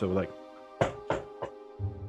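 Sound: knocking on a door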